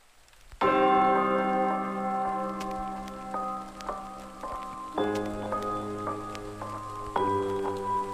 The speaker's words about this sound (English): It's raining.